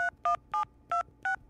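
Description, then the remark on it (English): Six quick telephone keypad tones beep in a steady rhythm as a phone call is dialed, each a short two-pitched electronic blip, clear with brief silences between them and no voices. “I got to make a quick phone call.”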